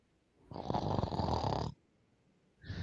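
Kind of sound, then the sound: human body sound, person snoring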